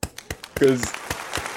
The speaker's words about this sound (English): I'm gonna give that a clap